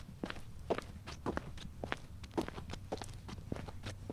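Steady footsteps of a woman walking up to a priest at a building, forward at an even pace, about a dozen crisp steps in a row, moderately loud with no talking.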